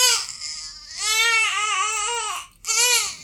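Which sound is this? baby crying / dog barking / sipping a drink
baby crying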